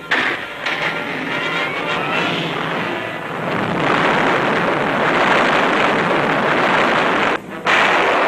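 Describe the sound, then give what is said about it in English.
Depth charges launched out over the ocean at a German U-boat explode underwater in a loud, continuous roar of rumbling blasts and churning water, swelling heavier midway, with a brief lull just before the end. “Depth charges fly out over the ocean.”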